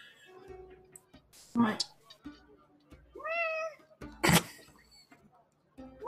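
A cat meows once, clear, with a rising-then-falling wail, between a couple of sharp noisy bursts and other faint, soft sounds.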